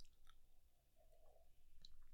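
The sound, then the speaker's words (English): A quiet sip of coffee: a short soft slurp with faint mouth noises and a small swallow, no talking. “Coffee sip.”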